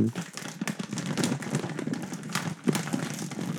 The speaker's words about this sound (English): So it'll be like, or like, this is a paper bag.